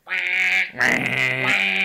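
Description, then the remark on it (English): A duck quacks loudly, two long, raspy, nasal calls one right after the other, with no voices in between. “Yeah, he pinched the duck and the duck got to run around.”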